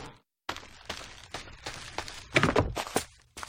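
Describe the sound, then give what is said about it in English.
A steady run of crisp footsteps of a video game character, about two per second, with the tread growing heavier and brighter partway through as the character crosses from one surface onto another; no voices. “So, right now we are listening to only the footsteps.”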